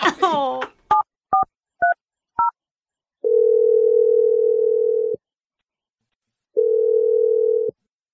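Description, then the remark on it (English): A brief voice at the start, then four quick, evenly spaced touch-tone beeps as a woman's phone number is keyed in, followed by two long, steady ringing tones on the line with a pause between. “I'm just going to dial her number.”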